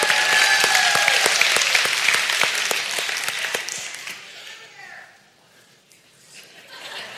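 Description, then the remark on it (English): An audience breaks into dense, steady applause with many overlapping claps and a few sharper smacks, holding loud for about four seconds before tapering off into quiet murmurs. “You can applaud for being here.”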